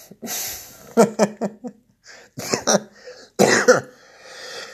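A series of wet, phlegmy smoker's coughs: a quick burst of several hacks, then a couple of heavier, rattling coughs after short pauses, with raspy breathing between them.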